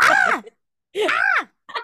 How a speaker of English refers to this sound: I love the random scream that comes into the background.